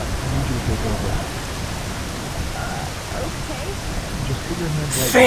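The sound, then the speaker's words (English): Steady rain from a sudden shower with high winds falls in a continuous, even hiss that fills the whole scene at moderate volume, ending with a brief louder burst of noise. “Forecast didn't call at all for rain today.”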